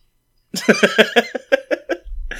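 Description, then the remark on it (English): A person who is a little under the weather gives a quick run of about eight rhythmic, throaty coughs, fairly loud and evenly spaced, with no talking around them and a low rumble creeping in at the end. “Yeah, I have a cough. I'll try and make it so it's not audible.”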